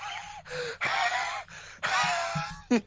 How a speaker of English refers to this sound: Like, oh, there's this heavy breathing going on in the background. It's because he's just wheezing across from me.